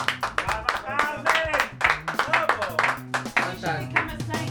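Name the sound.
round of applause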